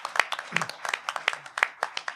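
Audience applause: many hands clapping in a steady, slightly uneven patter. The claps sound sharp but moderate in volume, as if heard from a short distance in a room, with no one speaking.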